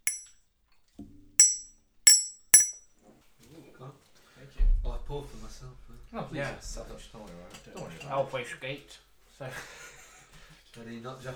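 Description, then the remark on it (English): Four bright, ringing clinks of glasses, crisp, tap out an uneven rhythm in the opening seconds as sake glasses are handed out for sake, and then people start talking over a low rumble. “Who wants sake? Do you want sake? Sure. We'll give you this glass.”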